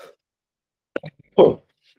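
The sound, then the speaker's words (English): A muffled, held-back cough: a couple of short clipped bursts, then one louder, breathy, half-suppressed cough that fades quickly into silence. “Oh, I was trying to stifle that cough.”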